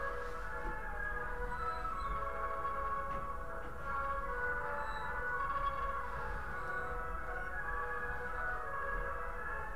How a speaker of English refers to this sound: Ghost train?